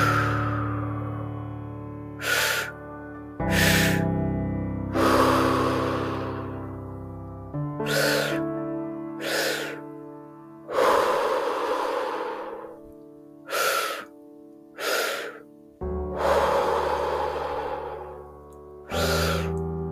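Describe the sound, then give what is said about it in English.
A series of about ten deep, audible tri-active breaths into the belly and chest, then released, alternating between longer and shorter whooshing inhales and exhales, over a steady, sustained musical drone. No one speaks. “And coming into 10 deep tri-active breaths, breathing into your belly, into your chest, then release.”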